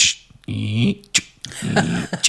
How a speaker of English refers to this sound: And at one point, he was, he has this really annoying habit of pushing the cat flap. So he's almost like he's just pushing it and then and you hear this.